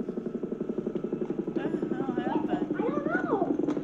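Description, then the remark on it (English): A police helicopter's rotor chops in a steady, rapid rhythm overhead, fairly loud and continuous throughout, with voices or wavering vocal sounds rising over it during the second half. “There's three squad cars and a police helicopter.”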